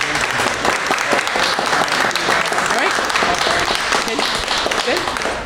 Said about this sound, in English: So kudos to you. Applause galore.